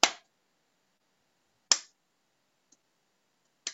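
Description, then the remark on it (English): Three sharp hand claps spaced slowly apart, part of an exercise of clapping and then touching the hands to one side of the nose and face, each with a short ringing decay, and a faint tap between the last two. No one speaks. “So just for the listeners, we're clapping our hands and then touching our hands to one side of our nose and face”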